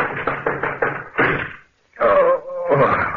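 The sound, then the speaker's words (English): A man running into a desk and smashing it up: a quick run of heavy thumps and knocks, then a louder crash, a brief silence, and a longer rough clattering burst of splintering wood. “Yeah, the shots missed, but I certainly smashed up that desk I ran into.”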